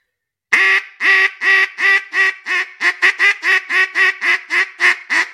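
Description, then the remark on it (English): A rapid series of about fourteen loud, nasal hen-duck quacks blown on a duck call, starting spaced and speeding into a quicker, choppier cadence, alone without talking. “So you'll be tongue twisted when you're trying to do the two different hens to start with.”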